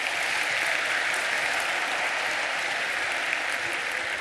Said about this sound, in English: The Lacey Theatre Company gave us a beautiful rendition of this story. Round of applause for the Lacey Theatre Company, please.